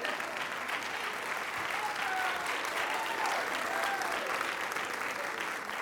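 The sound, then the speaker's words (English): Sustained applause from a large standing audience for a singer who led worship, a steady dense clatter of clapping hands that stays loud throughout, with a few faint cheers or voices rising and falling underneath. “Stand up, give her applause.”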